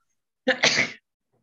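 A single sharp sneeze bursts out, a quick breathy catch followed by the forceful explosive release, with silence on either side.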